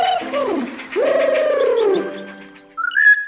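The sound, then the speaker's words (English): A rufous treepie, a member of the crow family, calls with rich, fluting notes that swoop and arch downward, then ends on a brief higher, sharper note. No voices or other sounds. “You know, the rufous tree-pea is part of the crow family and lives in South and Southeast Asia.”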